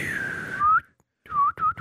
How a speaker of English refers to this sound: Oh, another podcast intro of whistling.